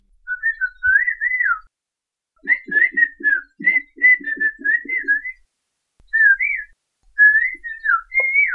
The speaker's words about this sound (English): These are a couple of guys having a conversation. They're speaking in Sochiapam Chinantec. In that language, you can talk by whistling.